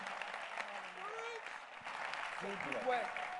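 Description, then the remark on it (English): A church crowd claps steadily and enthusiastically as a clap offering to the Lord, a dense, continuous patter, with raised voices calling out over the applause throughout. “Give the Lord a wonderful clap of offering.”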